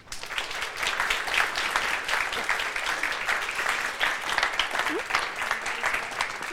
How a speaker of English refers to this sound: So please give a warm applause